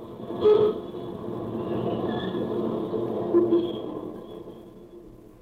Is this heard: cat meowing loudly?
no